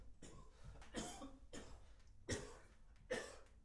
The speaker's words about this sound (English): Coughing.